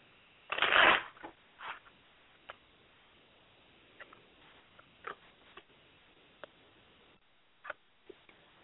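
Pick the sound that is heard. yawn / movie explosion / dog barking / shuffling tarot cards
shuffling tarot cards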